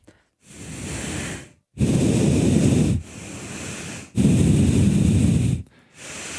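A person exhaling loudly through the nose: loud nasal breaths in a steady rhythm, with two stronger rushing exhales alternating with softer intakes, each lasting a second or more with brief pauses between.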